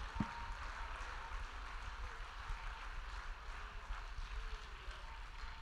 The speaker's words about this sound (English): One more time, give Jesus a great mighty hand clap of praise.